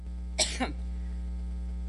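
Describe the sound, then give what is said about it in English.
A woman gives two sharp, harsh coughs in quick succession during a coughing fit while speaking at an event in New York, followed by quiet with a steady low electrical hum running underneath throughout. No one speaks. “She had like a really bad coughing fit while she was speaking in New York.”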